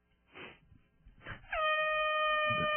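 A loud, sustained air horn blast kicks in partway through and holds steady to the end, preceded by a couple of short rushing noise bursts.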